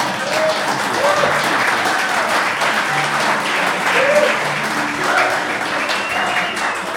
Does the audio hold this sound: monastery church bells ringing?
no